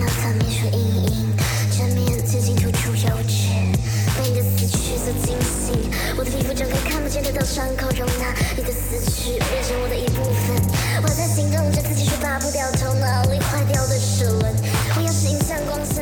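A dense electronic music track with frenzied rapping plays loud and steady, driven by a pulsing, repeating bass line with layered synth tones and busy percussive clatter on top.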